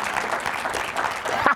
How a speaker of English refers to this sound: And I say, you need to applaud right now, all of you